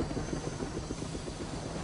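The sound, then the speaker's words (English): A helicopter roars steadily with a rapid, rhythmic rotor chop over a dense engine whine, fairly loud, with no voices. “Is that how a helicopter's supposed to sound?”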